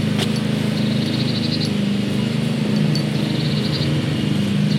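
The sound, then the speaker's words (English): A lawn mower engine drones steadily and loudly, its low rumble unbroken throughout, with faint chirps flickering high above the noise. “I could feel my breathing getting shorter and shallower as the sound of the lawnmower enveloped me and my pulse rate shot up.”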